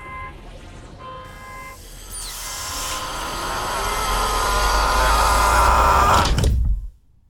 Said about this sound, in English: Even the whoosh of pressurized air being sucked out and obliterated by the vacuum of space sounded just like the movies. Sounded almost familiar, as if he'd been ripped untethered into the never-ending galaxy sometime before.